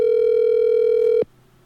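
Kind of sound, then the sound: signal or alarm, telephone dial tone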